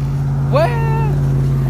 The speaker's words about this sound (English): Well, if you hear that, folks, that's because that's a car. Because we're walking. And talking.